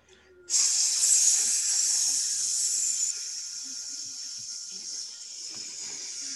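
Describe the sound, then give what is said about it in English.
A loud, steady sizzling hiss sound effect starts abruptly after a brief quiet moment, like food hitting a hot griddle, then eases slightly in intensity and keeps crackling on through the end. “Sizzling hot takes are brought to you by Der Burgers.”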